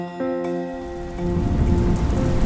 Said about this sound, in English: The very next day, it finally started raining. It had not rained for about 11 months, but then it started raining again.